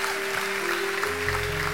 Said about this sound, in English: Clap those hands if you know he's doing it right now.